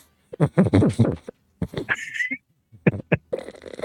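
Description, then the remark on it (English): A small dog named Tater breathes noisily in short snuffling, wheezy bursts, with a high whistling tone in one breath and a raspy, snorting huff at the end. “Listen to him. Listen to his breathing.”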